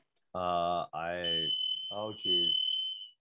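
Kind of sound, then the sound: signal or alarm, smoke alarm going off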